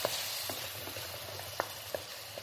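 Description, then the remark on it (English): Steady, bright sizzling from a hot frying pan as three chopped tomatoes are added to the cooked onion and stirred in, with irregular soft scraping and clicking of a utensil against the pan every half second or so. “We are going to add these on into the same pan and we're going to mix.”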